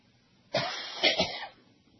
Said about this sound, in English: Well, you weren't coughing up like that when I got here this morning. No, but that's because I've been talking now an hour and a half.